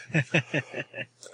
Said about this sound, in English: Pardon me if I clear my throat a lot. I came down with I guess it's the flu on Thursday, and I'm just now getting over it.